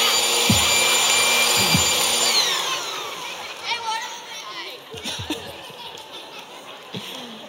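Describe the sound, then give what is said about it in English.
A group of people imitate snoring together, producing loud, rough, overlapping snorts and breathy rasps at an uneven rhythm, with scattered giggles mixed in. “Let me hear you snoring this time.”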